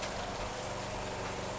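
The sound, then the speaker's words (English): Steady, even rain hisses across the whole short stretch, a dense wash of noise with a low rumble underneath and no voices. “Just listen to the rain and think what it means to relax, like a man.”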